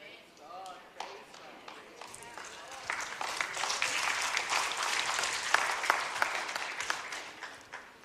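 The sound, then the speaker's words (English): A crowd breaks into applause that starts with scattered claps, swells into loud, dense clapping, and stays strong before easing slightly, with a voice briefly heard at the start. “Don't clap now, clap when it happens.”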